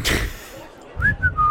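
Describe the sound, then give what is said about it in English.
A brief bit of casual whistling: a few short, clear notes gliding up and down near the end, after a soft burst of noise at the start. “kicking a rock and looking around, whistling, like with his hands behind his back.”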